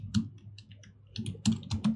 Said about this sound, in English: Let me make sure I'm not showing this. I can't be showing my PayPal account, not just because, hang on, I'm talking and typing, just give me 1 second.